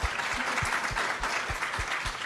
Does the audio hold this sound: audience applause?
yes